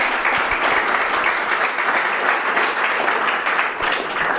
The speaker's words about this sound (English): That brings our live podcast to an end. So let's have a big round of applause for our guests this evening.